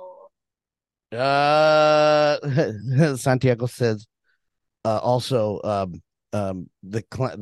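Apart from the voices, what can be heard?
yawning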